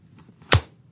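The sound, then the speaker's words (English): A single solid click as a Surface tablet kickstand is snapped shut live as a sample, a short, full-bodied thunk with a bright snap on top, likened to a car door, alone against a faint low hum. “did you remember when the Surface came out with its kickstand, they described when you close it as a car door”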